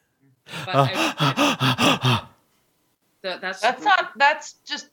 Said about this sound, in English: That's panting. Gasping for air. What was that?